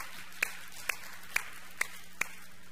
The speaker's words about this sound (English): Well done, man. Let's give them a hand. Cheer them on. Yeah.